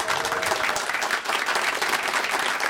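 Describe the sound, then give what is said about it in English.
An audience claps steadily, a dense crackle of many hands sustained throughout with a brief dip midway, no voices standing out. “Why are we applauding that?”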